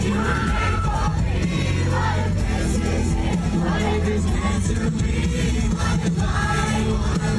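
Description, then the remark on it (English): A large crowd at a concert in North Dakota sings along in unison while a 6-year-old fan is on stage next to the performer, a dense, steady wash of many voices over loud, booming live music, with occasional yells and whoops rising out of the mix. “I hear the crowd. Yeah, the crowd singing, but she's right next to him.”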